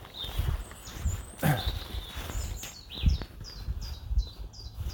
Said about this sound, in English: Now, what's that bird? You should know that bird song. Is it a blackbird? No. Don't know if the mic picks up the bird song.